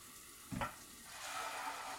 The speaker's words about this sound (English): I.e. just pour fucking dish soap in it. I don't know why I said degrease it. I'm just fucking putting it in water.